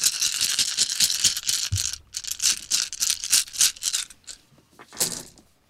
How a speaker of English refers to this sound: rolling all of these dice, and I am going to tell you how Act 2 is going to start, because we're seeing how badly or goodly the plan has gone.